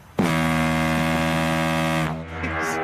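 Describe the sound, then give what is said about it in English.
A deep, blaring tugboat horn sounds in one long sustained blast with rich harmonic drone, then drops slightly in pitch and fades into a lower rumbling tail. “that's more of a tugboat than what I was.”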